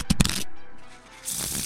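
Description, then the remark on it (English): A deck of playing cards being shuffled during a card game: two quick taps, then a steady papery riffling that swells louder near the end, with no talking. “And I got to shuffle again.”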